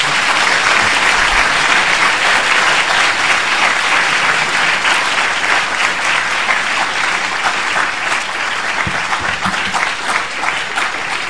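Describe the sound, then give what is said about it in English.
A sustained, spontaneous round of applause from many people at a meeting at LSE, dense and steady clapping at a loud level throughout, with no pause or build-down across the whole stretch. “Every now and again running these meetings, there's a spontaneous round of applause, which is unexpected and possibly even undesirable.”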